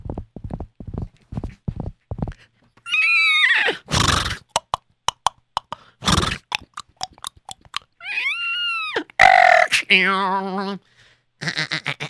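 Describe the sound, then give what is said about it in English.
Hooves clip-clop in a quick rhythm as a horse is ridden off, then the horse neighs loudly twice, the second ending in a shaky whinny, with more hoofbeats trotting between and after the calls. “All right, let me go and I have to go on my horse first, because I'm not going to walk there.”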